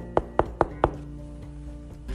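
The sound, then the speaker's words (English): Four quick, evenly spaced knocks on the door of Prancer's office, sharp, followed by a quiet pause with faint hum. “Prancer was waiting there, and Mason knocked on the door.”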